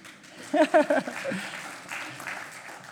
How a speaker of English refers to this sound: Sometimes you want to give a round of applause when someone reads that well, hey?